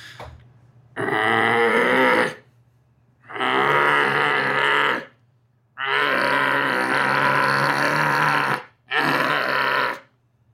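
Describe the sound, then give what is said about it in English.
A person voices four loud, gravelly monster grunts and roars, each lasting one to three seconds with short pauses between, imitating a bear-walrus monster, starting with grunts and building to a roar. “I can sound, I don't know, like a bear walrus monster. Takes a few to warm it up. So we'll start with a few grunts and we'll get the roar going.”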